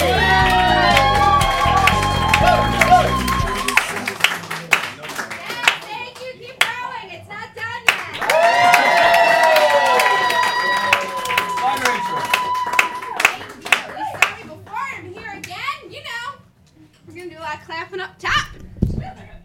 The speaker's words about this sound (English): That applause going for Randall Lawrence in the sound booth